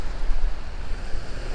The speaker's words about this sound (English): They go with the flow of the tides, how the moon impacts the waves and the energy of the waves, whether they're a crashing wave or right now these waves are actually pretty gentle.